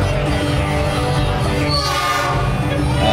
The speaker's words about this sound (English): You'll hear a train.